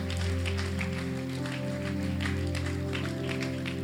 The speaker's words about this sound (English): I appreciate that applause. I do.